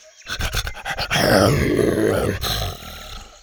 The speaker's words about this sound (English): Buck's tongue hung out his fanged mouth, and he started to pant excitedly when he caught wind of the wonderful smells coming from the galley.